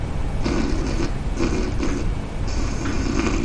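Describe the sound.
A person imitates a dying lawnmower with their throat: rough, rasping, sputtering bursts that pulse unevenly, about four of them, loud and steady over a continuous gravelly drone.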